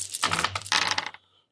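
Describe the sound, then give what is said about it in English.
Dice clatter across a hard tabletop in a quick burst of overlapping clicks and rattles, fairly loud, lasting about a second before settling into silence. “I should put more dice in the roll.”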